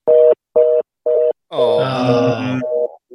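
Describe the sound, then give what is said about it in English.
A phone line's out-of-order tone on a call placed from a mobile phone: three evenly spaced, loud electronic beeps, then a drawn-out human groan over the line before the tone resumes. “It's out of order.”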